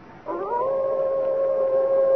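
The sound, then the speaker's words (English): A single long, steady howl of a white wolf, thought to be a she-wolf, among trees, rising at the start and then holding one sustained mournful tone, fairly loud and clear, with no voices. “There, Father. Through the trees. The white wolf.”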